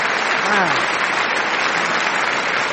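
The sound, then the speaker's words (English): Steady applause from a crowd fills the whole stretch, dense and even, with a brief voice rising faintly underneath near the start. “All right, they got some claps.”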